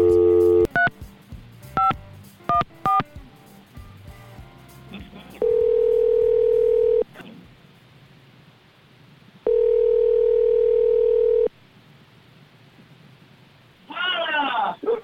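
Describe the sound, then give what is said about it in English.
A quick run of touch-tone dialing beeps as a call is placed to someone on a beach in Mexico, followed by two long, steady telephone ringing tones separated by a pause, then a voice briefly answers at the end. “Now, she's off this week, actually on vacation in Mexico, but let's give her a call on the beach. See if she answers her phone.”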